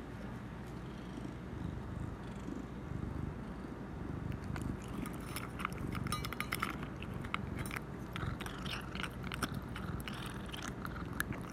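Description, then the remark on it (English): A cat eating kibble a few steps from the microphone crunches in quick, irregular bursts of crisp, dry bites that grow busier after a few seconds, over a steady low rumble. No one speaks. “It turned out that the cat was eating some kibble a few steps from the mic and it was picking up.”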